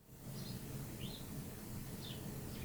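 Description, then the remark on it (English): A bird gives the same short, high chirp again and again, about four times at uneven intervals, fairly faint over a steady low outdoor rumble. “You seem to be repeating yourself, Mr. Bird. It's the same noises over and over again.”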